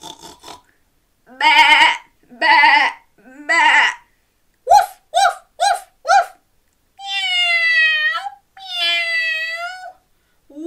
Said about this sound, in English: Then the other animals gathered round and all let out a deafening sound. See if you can join in with all of these.